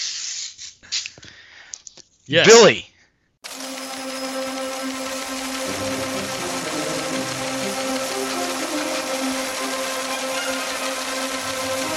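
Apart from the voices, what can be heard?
teletype machine printing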